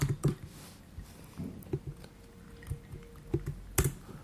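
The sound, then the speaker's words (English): Soft, irregular typing on a computer keyboard while looking up figures from Salvemos el Fútbol: a scattered run of quick, light clicks and taps with uneven gaps, some a little sharper than others, with no voices. “In fact, I wanted to get the numbers up from Salvemos el Fútbol, who are a government NGO, so just excuse the clicking as I type in the background.”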